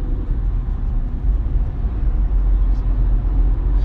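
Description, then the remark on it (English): Steady, loud low rumble of a car driving on the road past a wreck, with constant road and engine noise and no clear voices. “So, and of course, I'm driving past. It looks like there's a wreck.”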